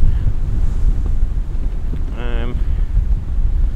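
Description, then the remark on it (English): Steady wind roars and buffets the microphone over a constant low rumble of choppy open sea in sleet and mist, with a brief wavering tonal cry rising out of the noise midway through. “The sea is choppy, but nowhere near as choppy as it has been.”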